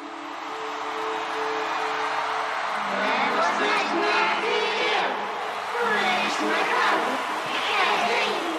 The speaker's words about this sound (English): There's something that they do on this record that I think is really interesting, and that's that they bring in crowd noise, kind of like you're at a show.